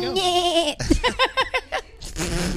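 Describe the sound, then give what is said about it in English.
A person imitates a goat, letting out a drawn-out wavering bleat followed by a quick series of stuttering, bleating pulses, loud, with a brief chuckle-like sound in between. “he says that he learned that I make good goat noises.”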